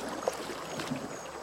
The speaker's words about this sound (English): We're gonna dock right about where the old Paramount sign is. See it peering out of the water?